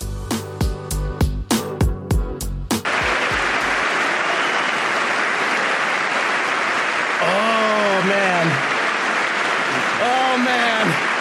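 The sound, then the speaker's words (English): The audience at Trump's presidential address to Congress bursts into sustained, loud applause after a brief choppy opening, with scattered voices whooping and cheering over the steady clapping, cheering the wife of a Navy SEAL who lost his life in the Yemen raid. “they're cheering the wife of the soldier who lost his life, the Navy SEAL who lost his life in the Yemen raid”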